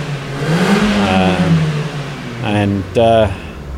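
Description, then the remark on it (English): A Ford Focus engine, from a car that failed its emissions test, revs up and down with a rising, droning pitch, followed by brief voices cutting in near the end. “What's revving there? That's Ford Focus. Failed its emissions.”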